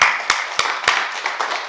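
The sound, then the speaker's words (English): A crowd claps together, with a dense patter of many hands and a few sharper, louder claps landing in a steady beat about three times a second. No one speaks. “Let's give a hand clap for that.”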